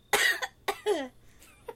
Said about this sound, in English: Yes, cough.